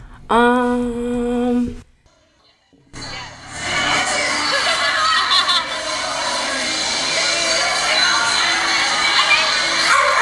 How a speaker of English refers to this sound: And that was me stepping on their dog. So, yeah, the innocent bystander was definitely their dog, and I just want to say I'm really sorry.